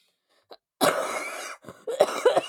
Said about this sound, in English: Coughing and dying is not the intro